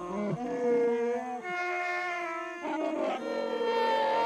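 Several deep, growling Wookiee-like voices moan and howl together in a slow, wavering melody, loud and sustained with sliding pitch, swelling in three long phrases.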